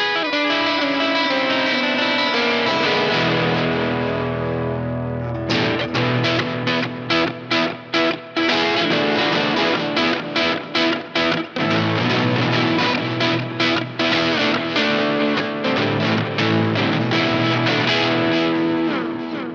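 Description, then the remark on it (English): Heavily distorted electric guitar chords played through a distortion pedal, loud and saturated, first a sustained ringing chord, then rapid chugging strums with short choppy gaps, played alone without any talking. “There's not a lot of pedals that sound like this.”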